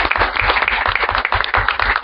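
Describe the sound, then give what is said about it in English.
A crowd breaks into steady applause for the Fort McMurray Public Library, many hands clapping at once in a dense, continuous patter that stays loud and even throughout, with no voices standing out. “Okay, so just to prolong this a bit more, a big round of applause for the Fort McMurray Public Library.”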